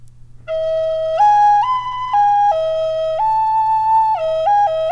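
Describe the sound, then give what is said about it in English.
A voice imitates the flute melody of a man playing a flute at a market in Sedona, with a string of sustained, reedy notes that step up and down in pitch, held steadily and fairly loud over a low constant hum. “And I was walking down this little market, and this dude just playing a flute, and it just talked to me. It was like, it sounded like this.”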